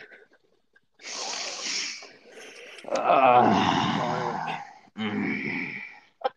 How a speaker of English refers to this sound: Yeah, I sniff and … sniffs.